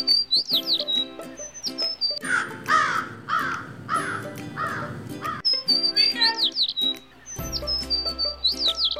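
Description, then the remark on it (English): Sparrows chirp in quick, bright bursts, with short rising and falling tweets. A crow's harsher, raspy cawing breaks in partway through, then the chirping picks up again. “Say the sparrows.”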